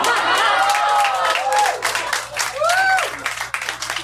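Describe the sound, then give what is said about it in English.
A crowd bursts into steady, loud applause, a dense patter of many hands clapping, with a few high whistles and cheers rising over it. “Pause for applause.”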